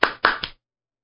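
Three sharp, lone hand claps in quick succession, each a bright smack with a short tail, fading into silence afterward. No voices, just a single person's sparse, sarcastic clapping to welcome an instructor to a police detective squad.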